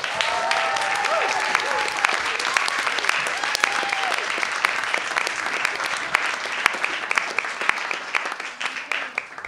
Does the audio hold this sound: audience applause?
yes